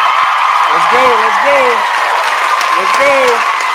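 audience applause and cheering

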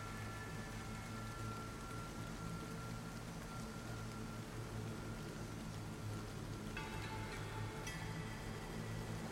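torrential rain downpour

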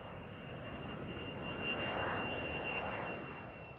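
airplane engine noise

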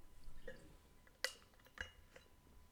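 drinking water

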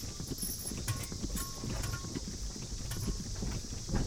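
horse hooves clip-clopping

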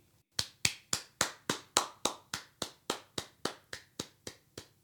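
round of applause

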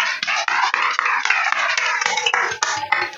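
audience applause

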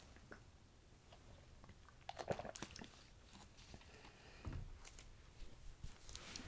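sipping water

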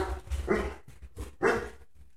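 dogs barking

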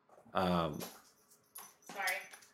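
dog barking and whimpering

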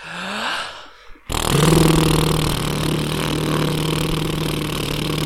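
lip trill vocal warm-up

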